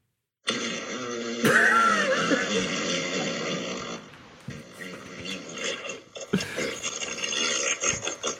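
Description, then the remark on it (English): A long, muffled fart sound effect rumbles on for about eight seconds, its wavering, buzzy tone sputtering and swelling in uneven bursts with no talking over it. “That was a muffled one.”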